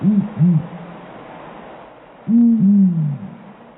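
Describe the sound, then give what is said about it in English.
A male and female pair of the world's largest owls hoots in a tight, synchronized duet, the male giving the first and third notes and the female the second and fourth: two short, quick hoots, a pause, then a louder run of longer, overlapping hoots at slightly different pitches over a faint background hiss. “the male does the first and the third note, and the female does the second and the fourth.”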